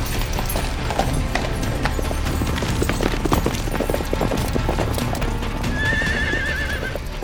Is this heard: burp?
no